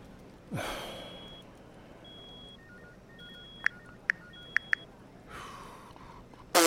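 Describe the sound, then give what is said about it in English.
A mobile phone notification from Mark Alan Nichols' phone, left with the same settings at a crime scene, plays a run of thin, high electronic beeps and a few sharp clicks, fairly quiet, framed by a heavy breath before and a sigh after. “Can someone come and mute Nichols' phone? Or change the bloody notification sound?”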